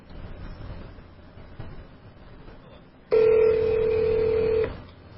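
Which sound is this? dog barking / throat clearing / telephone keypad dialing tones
telephone keypad dialing tones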